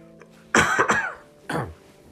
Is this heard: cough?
yes